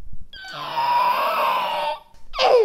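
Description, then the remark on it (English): A child imitates a raptor call with a loud, raspy, high-pitched screech held for about a second and a half, followed by a shorter shriek that slides sharply downward in pitch. “All right, now let's hear a raptor.”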